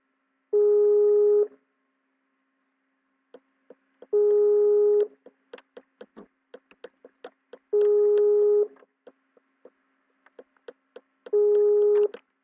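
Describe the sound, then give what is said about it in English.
An outgoing Skype voice call ringing tone: four steady electronic tone bursts repeat about every three and a half seconds, with faint clicking sounds scattered in the gaps between rings. “I can call you on Skype, Dunn. I'm calling you right now. We're going to try a voice call.”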